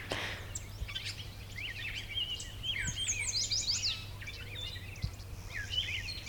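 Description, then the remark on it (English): Starlings squeal, whistle and make grunty chattering calls in a busy overlapping jumble, with other birds mixed in over a steady low hum. “The sort of squealy sounds or squealy grunty sounds are starlings.”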